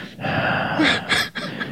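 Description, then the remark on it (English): A voice performs loud, exaggerated heavy breathing, a few drawn-out huffing breaths and gasps in quick succession with brief pauses between them. “I just want you to know it's written down on the notepad, so I have to do the this. The heavy breathing.”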